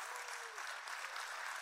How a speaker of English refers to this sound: And then our family at SCI Chester in partnership with God Behind Bars. Can we show them some love? Clap for them.